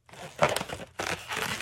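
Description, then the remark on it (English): Rubbery squeaking and crinkling as a balloon is stretched, twisted and tweaked into a heart shape for a balloon figure, in two scratchy bursts with a brief pause between them, the first with a sharp squeak. “And people watch me do balloons a lot of times.”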